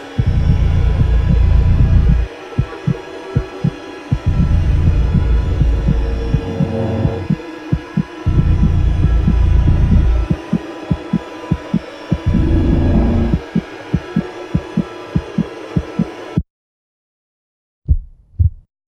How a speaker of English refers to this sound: And then I just shut it off and, you know, threw in an extra heartbeat at the end there. Just kind of like, that's it. Game over.